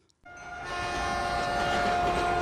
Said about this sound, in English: And Jawan has the instruction to hit the Freight Train sound every time I say the Freight Train.